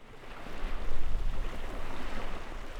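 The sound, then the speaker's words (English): Open coastal ambience on a little gravelly spit of land on a refuge's coastal plain, just after stepping off a boat: a steady, full rush of wind with lapping water and surf, swelling slightly and then holding even throughout, with no voices. “when my colleague Nick Mott and I had just stepped out of Vabjorn's boat and onto the coastal plain for the first time”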